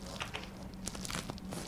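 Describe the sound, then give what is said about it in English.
A knife saws through crunchy sandwich bread crust, giving a steady stream of dry, crackly crunches and short scratchy bursts at a moderate level with no talking. “Can I listen to the crunch?”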